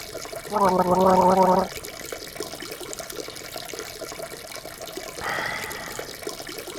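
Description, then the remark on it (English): Water from a glass is swished around in a mouth: a loud, bubbly gargling burst lasting about a second, then quieter wet sloshing and a brief higher-pitched gurgle at the end. “I'll just swirl it around a bit.”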